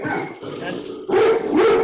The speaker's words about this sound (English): That's the UPS man coming home. That sounds like a big dog. Well, you know, he's a chocolate lab, but he would lick you to death.